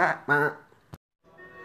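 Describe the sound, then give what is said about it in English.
A sheep bleats in two quick, nasal bursts as an alert sound, followed by a sharp click and a quieter fading tone at the end. “Yeah, that's the sheep alert. We'll yeah, that's the sheep calling.”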